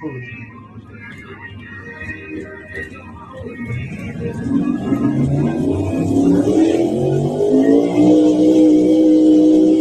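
A big drag racing truck engine idles roughly, then revs up hard about halfway through, its pitch climbing and its roar growing louder and steadier to the end.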